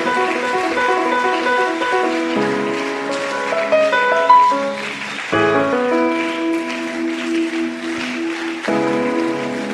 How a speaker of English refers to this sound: Stand to your feet and clap for Jesus. Fica de pé, palmas para Jesus.